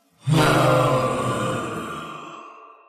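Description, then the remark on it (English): A voice lets out one loud, sustained, low guttural roar, imitating the battle cry of a character raising a hammer, that starts abruptly and slowly fades over a couple of seconds with an echoing tail. “At the end of your turn, he takes the hammer and raises it up and lets out a guttural cry.”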